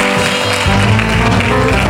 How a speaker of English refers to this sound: Come on, give God a clap praise.